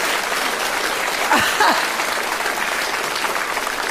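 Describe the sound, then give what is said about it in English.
An audience applauds steadily for the full few seconds for an office assistant of 39 years, a dense, even wash of clapping, with a brief vocal whoop rising out of it near the middle. “Nobody's ever applauded on you”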